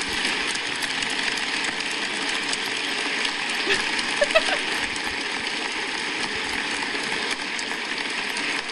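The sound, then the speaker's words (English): A crowd applauds steadily for the whole stretch, a dense, even wash of many hands clapping at once with no clear individual claps and no talking over it. “Man, y'all clap a lot.”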